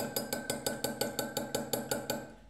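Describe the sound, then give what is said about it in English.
A spoon stirs liquid tinted with a little green food colouring in a bowl, clinking against the sides in a quick, steady rhythm of about fourteen bright taps over a faint ringing tone, with no voices. “Right, giving it a stir.”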